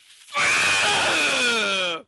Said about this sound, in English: I'm gonna scream.